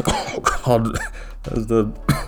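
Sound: chesty cough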